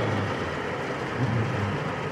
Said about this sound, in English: And it's raining that heavy, as you can hear. And I'm... That's why I'm not making it. Let's see. It's picking up.